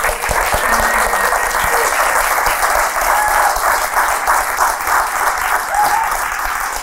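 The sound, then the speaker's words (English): Loud, sustained applause from an audience clapping hard, a dense steady wash of many hands that holds its level for the whole stretch, with a few faint cheers mixed in. “Well, she's not here, so if you clap that hard for her, please welcome Hugh Grant.”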